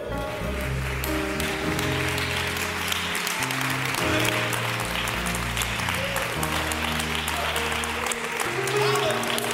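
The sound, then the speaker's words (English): An audience claps their hands to the Lord during a church service in a steady, continuous wash of applause over sustained organ and bass notes, the clapping loud and even throughout. “Come on and clap your hands into the Lord.”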